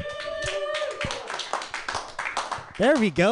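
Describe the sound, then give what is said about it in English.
Sparse, scattered clapping from a small comedy show audience as a comedian takes the stage, with a few voices mixed in and a loud whoop or cheer rising near the end. “That was a weak-ass applause.”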